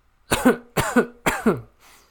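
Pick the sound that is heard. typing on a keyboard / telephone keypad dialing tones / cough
cough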